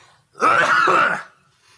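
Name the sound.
sneeze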